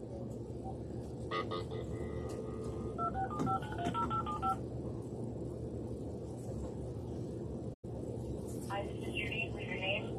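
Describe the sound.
A phone number is dialed with a quick series of keypad beeps, and after a brief cut a ringing tone begins for a call that goes unanswered, all over steady background noise and murmuring voices.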